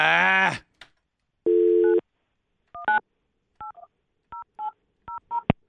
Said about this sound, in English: Okay, why all of a sudden can I not make a call on this phone? I've been doing it every day. Operator error. No, seriously. I'm really serious. It's not letting me call out. I dial 9 and then 1-800.